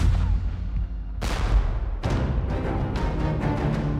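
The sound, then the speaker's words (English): Heavy cannon fire from a Patriot artillery crew at dawn booms out over a river at an anchored British boat, in a series of blasts, the first two spaced apart and then a quicker irregular volley, all over a constant deep rumble with no voices. “Then, the men heard cannon fire.”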